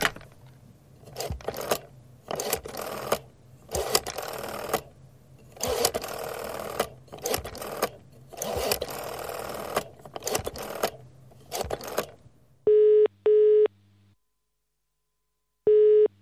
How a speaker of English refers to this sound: Why does it sound like I'm using a phone in the UK?